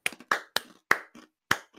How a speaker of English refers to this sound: I mean, let's get a slow clap for Tim.